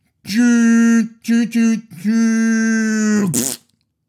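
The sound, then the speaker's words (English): A person vocally imitates a train as a sound effect for Darby Allin's suicide dive, holding a steady, buzzy whistle-like tone, breaking into a few quick short bursts, then another long held note that ends in a breathy hiss. “I made a sound effect. To do the train.”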